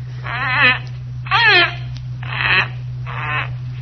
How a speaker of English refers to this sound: The bird was moving about in the cage now, nodding his head in a very peculiar manner, uttering the most extraordinary sounds. I began to realize that he was imitating the thing he saw standing by his cage.